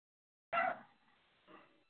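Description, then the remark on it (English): A dog barks sharply once, then gives a second, softer bark about a second later, with a brief echoing tail between them and no other sound around. “Shut up, dogs.”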